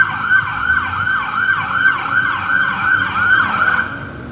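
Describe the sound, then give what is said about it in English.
An ambulance siren wails loudly in a fast, repeating rise-and-fall pattern, with traffic rumbling underneath as the ambulance passes by. “We'll wait for this ambulance to pass.”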